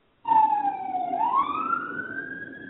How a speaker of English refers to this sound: Yeah, that's some sirens going outside my apartment.